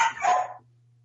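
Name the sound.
dog barking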